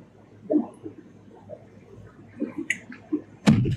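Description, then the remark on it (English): Someone finishes drinking water, with a series of soft gulps and swallows spread over a few seconds, followed by a sharper clunk near the end. “Oh, I'm going to finish this water.”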